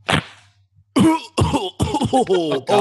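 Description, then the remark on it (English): A loud coughing fit: a sharp first hack, a short pause, then several raspy, rough coughs and throat-clearing sounds in quick succession. “I took a big, that was, you know, when you take a, and you can't stop coughing.”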